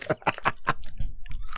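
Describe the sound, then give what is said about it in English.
Chewing of a dry, powdery snack: a quick run of four soft, breathy crunches, then quieter, muffled mouth sounds as the chewing slows. “Wasn't even crunchy. It was just like powder.”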